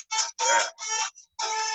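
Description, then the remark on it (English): A phone ringtone plays a circus-style tune in bright, buzzy electronic tones, four short bursts separated by brief gaps, moderately loud with no voices over it. “Is that your ringtone? Yeah, it was. Okay. Circus.”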